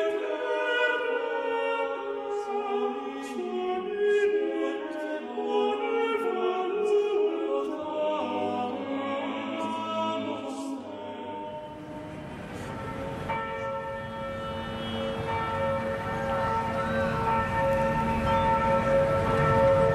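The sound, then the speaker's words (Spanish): Large bells of Notre-Dame cathedral in Paris, France ring out continuously in overlapping peals for the cathedral's 850th anniversary, their deep tones and shimmering overtones blending into a loud, sustained wash with no voices present. “Vamos a escuchar las campanas.”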